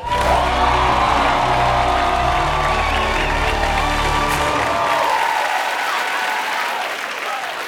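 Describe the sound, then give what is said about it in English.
The Daily Show studio audience bursts into loud, sustained applause with cheers and whoops mixed in as Roy Wood Jr. is introduced to deliver the show's annual address, the clapping holding steady for several seconds before beginning to thin out near the end. “So please rise, but not really. You can just clap as Roy Wood Jr.”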